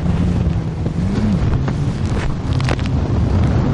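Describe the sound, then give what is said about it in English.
Loud, constant wind buffets the microphone while waves 20 to 30 feet high, made massive by wind, current and an underwater canyon, churn and splash around a boat at sea, a dense, roaring wash with a low rumbling hum underneath and no voices. “It's not just the wind and the current that makes the waves here so massive.”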